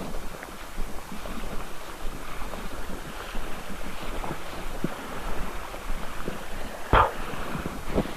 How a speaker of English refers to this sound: I'm slowly getting towards a place where I can get down to the beach. You're probably able to hear the waves now.